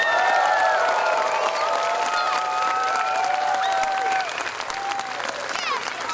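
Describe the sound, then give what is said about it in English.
A large crowd applauds loudly and steadily, with whoops and cheers rising over the dense clapping throughout, easing only slightly toward the end. “Ooh, that's loud. Thank you, guys. Give yourselves a round of applause for being here.”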